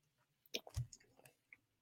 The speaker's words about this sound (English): I love that we were both sipping our water.